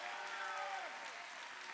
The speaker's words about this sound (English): Come on, keep on clapping, Victory Outreach.